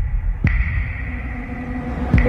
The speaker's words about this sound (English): The heavy bass and echo, cavernous echo that happens. Like, can we leave that alone for a little bit?